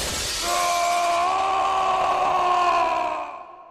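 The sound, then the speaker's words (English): The video game villain Sigma's long, drawn-out falling scream as he is shot and knocked out of the tower, held steady for a few seconds over a harsh crashing noise, then fading away at the end. No one speaks. “And then Red pulls out Axel's gun and shoots Sigma in the chin, and this knocks him out of the tower, and you just giant falling scream Sigma.”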